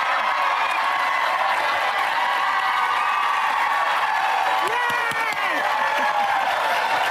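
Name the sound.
crowd cheering and applauding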